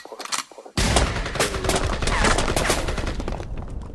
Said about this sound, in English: Blow, blow, blow. A lot of fucking gunshots. A lot of hostility, a lot of gunshots.